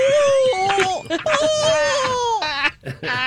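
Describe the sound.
A voice imitates a frightened scream from a rider on the Slinky Dog Dash roller coaster at Toy Story Land, Disney World: a long, high, wavering wail with sobbing, crying breaks and brief gasps between strained cries, loud throughout.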